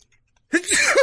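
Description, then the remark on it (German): After a brief silence, a single loud sneeze bursts out, breathy and voiced, trailing into a strained vocal tail. “Moment, ich glaube, ich muss niesen.”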